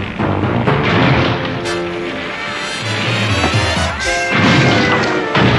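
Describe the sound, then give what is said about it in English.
A door being busted down in a Thundercats cartoon scene: several heavy smashing thuds and crashes burst out amid a loud, dense din with ringing tonal layers running underneath, with no talking. “They bust down the door, he pulls them back, and this is when the attack happens.”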